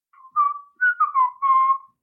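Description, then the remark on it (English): A person imitates robotic beeps and whistles with four quick, warbling tones that rise and dip, clear, with short gaps between them and no talking. “But he does it in Boobo language, which is beeps and whistles.”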